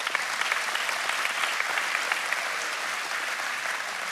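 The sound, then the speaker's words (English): An audience claps steadily, a dense wash of many hands with no breaks, holding an even loudness for about four seconds. No one speaks over it. “That's worth a hand clap. Come on, give it up.”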